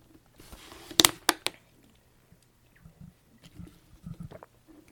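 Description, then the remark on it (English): A few sharp clicks and a brief rustle, like a bottle being opened and lifted, followed by several soft, low gulping sounds as someone drinks a swig of water. No one speaks. “The next thing you may want to do is, and I just got to grab a swig of water here.”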